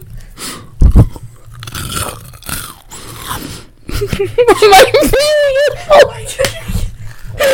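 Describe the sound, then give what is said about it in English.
Crunchy chewing with sharp bites and munching sounds, recorded as ASMR, mixed with breathy voices and laughter that grow louder toward the end. “Dude, you can't laugh while you do the ASMR.”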